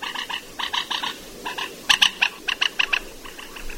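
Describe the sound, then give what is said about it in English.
A moorhen calls in a rapid series of short, clipped, croaky notes, bunched in quick rhythmic bursts that grow louder and sharper midway, clear with no voices. Recorded in an area with no water. “So the thing about this one, though, this moorhen, is the fact that this was recorded in an area where there shouldn't be moorhen, because there was no water.”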